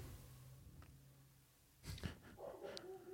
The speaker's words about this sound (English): is barking at the neighbor dog.